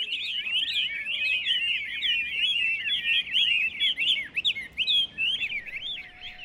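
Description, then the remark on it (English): A caged songbird sings continuously in rapid, warbling trills and whistled chirps, bright, with no pauses for the whole stretch and no voices present. “You could spend training one single songbird to do one particular sound.”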